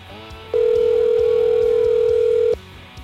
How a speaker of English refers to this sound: Let's get Mike on the phone. Oh, it's ringing.